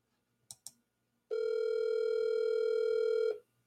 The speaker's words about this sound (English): Why ain't this working? She won't answer the phone.